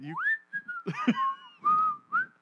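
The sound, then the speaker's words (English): A cartoon character whistles a short, bouncy tune while walking jauntily: clear sliding and held whistled notes around a steady mid-high pitch, with light shuffling and background noise beneath, no talking. “It's just because nothing happens beyond him with whistling this, and walking.”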